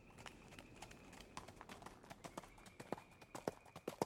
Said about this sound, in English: Near dawn, horses' hooves approaching the house wake Jeb from a sound sleep.